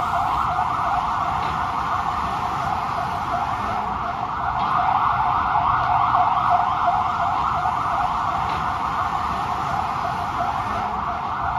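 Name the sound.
ambulance siren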